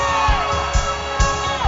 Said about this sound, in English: It is madness. Yes. Hey. Give the Lord a shout.